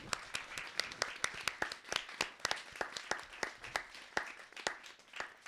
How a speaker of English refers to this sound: Thank you so much to our panel for coming. Let's have an applause for them.